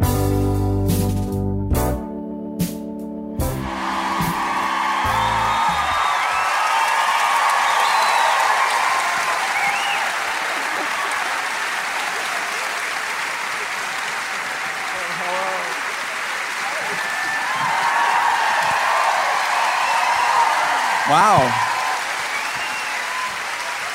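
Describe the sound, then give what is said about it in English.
A song's final loud chords cut off into a sustained roar of applause and cheering from a large crowd, with whistles and shouts rising over the steady clapping; a voice briefly exclaims. “What a crowd.”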